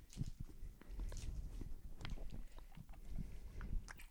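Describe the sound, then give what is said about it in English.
Wet chewing and biting on a large, sticky toffee-like candy, with irregular smacking and squelching sounds repeating throughout, fairly loud, with no talking. “You just got stuck on it. This is like a toffee.”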